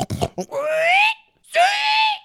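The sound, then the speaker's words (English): A person does a vocal impression of a pig: a few quick, rough snorting grunts, then two drawn-out, rising squeal-like cries, loud, with a short pause between them. “How's that pig impression?”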